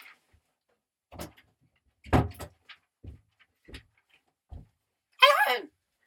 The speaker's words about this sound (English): Wait a minute, he has to open the door.